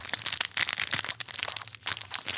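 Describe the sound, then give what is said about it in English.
Crinkly plastic packaging of butter cookies being torn and crumpled open, a busy run of sharp crackles and rustles lasting a couple of seconds, with no talking. “get it open.”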